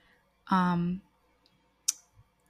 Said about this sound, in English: Clicking the wrong tab here.